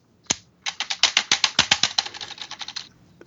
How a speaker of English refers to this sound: Sounds like you got a new keyboard.